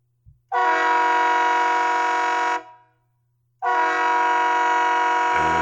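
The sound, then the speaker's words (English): Two long, loud train horn blasts with a rich, chord-like tone, each lasting a couple of seconds and separated by a brief pause, with no talking. “That's actually the train. This is the Rhino.”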